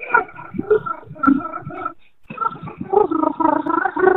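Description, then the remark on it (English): A voice sings a melody entirely on a continuous rolled R, producing a buzzy, rattling trill across two phrases split by a brief pause, fairly loud throughout. “Oh, you just roll your R the entire time.”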